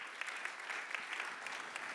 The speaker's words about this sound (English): Big round of applause for Pastor Glenn today.